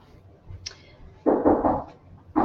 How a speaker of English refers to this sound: Can you hear that knocking? Sounds like one of my kids is locked out of the house.